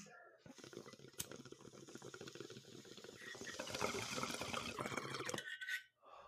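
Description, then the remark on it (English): A long, steady inhale of smoke through a water pipe, with continuous bubbling and hiss that builds in strength for about five seconds before cutting off abruptly. “Okay, let's take the long rip.”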